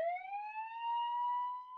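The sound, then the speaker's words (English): A steady alarm siren holds a single rising, sustained electronic tone with bright harmonics, loud, with no voices. “I do have to set off the scam alarm.”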